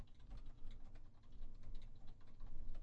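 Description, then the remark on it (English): Quick, irregular taps of someone typing a Google search on a tablet's touchscreen, fairly soft, with a low background rumble and no talking. “You don't have to keep typing.”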